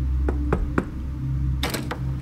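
A woman knocks on a door: three evenly spaced raps, a short pause, then a quicker cluster of several more knocks, distinct over a low, steady background hum.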